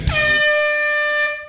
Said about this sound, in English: You're going to get these 9 seconds, and then when you hear the buzzer, you're going to have to stop with your answer. And I mean stop.